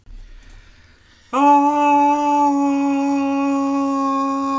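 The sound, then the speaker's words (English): The old ad break chime: after a second of low rumble, a loud, rich tone starts abruptly and holds at one steady mid pitch, sustained without fading through the end, with no talking. “I didn't know we were going back to the old chime.”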